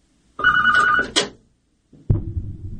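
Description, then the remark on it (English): A telephone rings loudly, one warbling trill-like ring cut off sharply, followed after a short pause by the start of another ring. No one speaks. “I mean, that wasn't my cell phone.”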